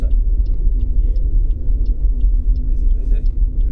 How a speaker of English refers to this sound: For our purposes, it's a lay-by on the northbound side of the A591, a busy stretch of dual carriageway between Kendal and Keswick.